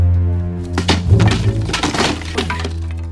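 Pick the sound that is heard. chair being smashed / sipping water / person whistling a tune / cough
chair being smashed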